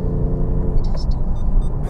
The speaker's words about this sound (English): I just got on the highway and I got a very fast mover behind me. And my car is cold. We got to get the police detector running.